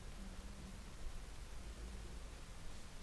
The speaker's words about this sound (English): Your white noise thing, sort that out.